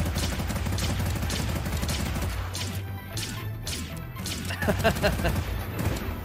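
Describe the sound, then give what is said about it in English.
A rapid barrage of loud, booming blasts fires in quick succession, dense and chaotic like cannon fire in a game, with crashing impacts layered throughout and indistinct voices mixed in. “He's shooting hypocrisy cannons.”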